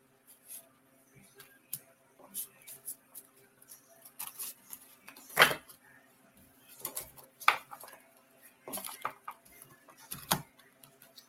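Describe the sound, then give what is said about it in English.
Cards being shuffled and handled for a card reading: scattered soft clicks and papery taps over several seconds, with a few louder, sharper riffling bursts standing out. No one speaks. “So we're going to see, I'm going to shuffle these cards and we're going to see what comes up for you.”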